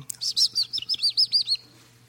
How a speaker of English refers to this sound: you know, when you think about what a bird does, those beautiful creatures that fly and land in your little thing in the backyard with the water and they twitter around